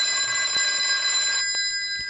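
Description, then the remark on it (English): An office telephone at Camp Golf rings in one sustained, bright metallic burst that cuts off and lingers briefly, with a couple of faint clicks afterward. No one speaks. “I've only heard that phone of yours in the office ring in my entire life.”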